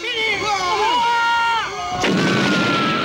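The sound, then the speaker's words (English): A wavering, high tonal whine slides about for two seconds, then a loud, roaring blast erupts and rumbles on, a film explosion effect of a man blowing up mid-air, with a lingering crackling tail. “So there's this shot of him flying through the air and he just blows up. Mid-air, and John's, like, spattered with his blood.”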